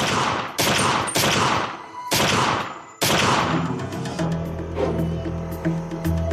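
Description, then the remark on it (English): Five loud, sharp gunshots ring out in quick succession, each followed by a brief echoing tail, and then a sustained low tonal hum lingers after the final shot; shots from a gun fired into a car in a driveway at night. “Montgomery panicked and fired seven shots into the car.”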